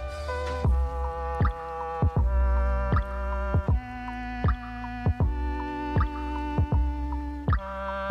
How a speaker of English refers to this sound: I got all this drip. You hear it?